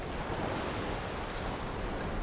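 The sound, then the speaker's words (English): Steady Pacific Ocean surf washes over sand at sunset in a continuous, even roar, moderately loud, with a faint breezy hiss and no voices. “One should always stand in the Pacific Ocean at sunset when one can.”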